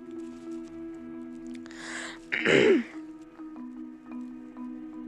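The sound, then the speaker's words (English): A person clears spit from their throat: a breathy rasp, then a short, harsh, gurgling hack, over a steady low electrical hum with no talking. “I don't have cough, sniffle, sniffle. I just have spit in my throat.”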